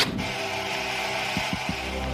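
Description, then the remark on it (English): HBO's Static Angel intro sound, played before its original shows: a steady, dense hiss of analog TV static white noise filling the whole clip, with a brief swell at the start and three quick low pulses near the end. No voices. “It was the so-called Static Angel that played before their original shows.”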